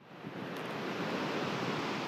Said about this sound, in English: Look at what happened to San Rafael Waterfall, which was once the tallest in Ecuador.